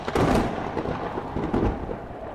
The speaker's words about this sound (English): Lightning and thunder are crashing constantly. That it's not, you know, like a lightning flash and then a boom and then it's quiet for a minute. It's just flash, flash, flash, flash, flash, flash, crash, crash, crash, crash.